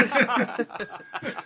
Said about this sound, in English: Oh! Early use of the inappropriate bell.